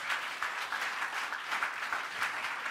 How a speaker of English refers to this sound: Go ahead if you are clapping.